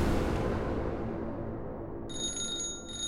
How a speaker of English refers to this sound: July 20th, 1973. The phone rang in Bruce Lee's Hong Kong home. Brandon, now 8, answered.